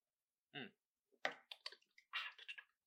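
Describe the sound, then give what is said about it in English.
Water splashes into a cup in short, uneven bursts, fairly quiet, after a brief squeaky tonal sound at the start. No one talks. “Hold on, I gotta get a little bit of water.”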